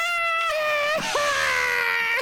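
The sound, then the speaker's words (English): A loud, high-pitched sustained scream, piercing, lasting about two seconds with a brief catch in the middle before it carries on, with no words spoken. “You know, if you just want to edit that in, like, just autistic internal screaming right there.”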